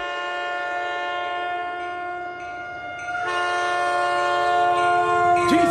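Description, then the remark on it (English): A train thunders by close to tents pitched beside the tracks at 1 o'clock in the morning, its horn blaring a long, steady chord over a rumbling roar that swells louder midway and bends in pitch as it passes. “Everything seemed fine until 1 o'clock in the morning when a train zoomed by.”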